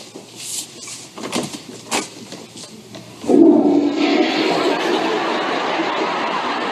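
A few knocks and a door clatter as a police officer opens a bathroom door, then a toilet flush bursts in loudly, becoming a steady rushing, gurgling wash of water that continues to the end.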